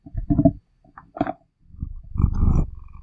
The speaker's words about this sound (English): Look at that face. That's the face of somebody who's so happy. Hang on. Put him, make him purr in the mic.